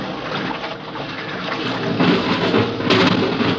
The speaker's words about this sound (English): What's going on? It's like an airlock. Water's being pumped out.